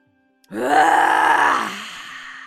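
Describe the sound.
A person lets out one long, forceful, growling exhale in imitation of a lion's roar during a breathing exercise, while pressing against the solar plexus. It is loud and raspy for over a second before tapering into a softer breathy trail.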